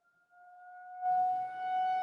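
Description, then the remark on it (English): Tornado warning sirens sound outdoors in South Lyon, holding a steady, mournful tone that swells in and sustains, with rushing background noise joining halfway through. “It's the tornado sirens going off here in South Lyon.”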